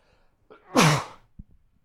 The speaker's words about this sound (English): That, ladies and gentlemen, was … sneezing.